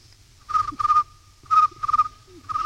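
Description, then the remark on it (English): Crickets chirp in short, buzzy trilled bursts that repeat in an uneven rhythm over a faint steady hum. The chirps are fairly loud, with no talking. “That's crickets chirping.”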